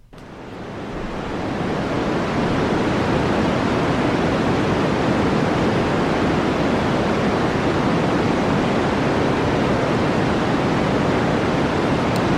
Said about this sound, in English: I play this for my nephew, I'm pretty sure. This white noise. This sounds like the machine I play from when I'm putting him for a nap